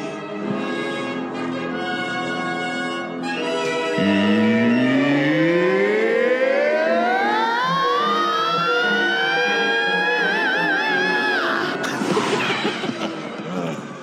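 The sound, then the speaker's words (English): A singer-style metal scream, as by the singer of a band, used for Luke falling: a long scream starts low and climbs steadily to a piercing, sustained high note with wavering vibrato before cutting off into a brief noisy burst. “Let's hear Luke falling with that … scream.”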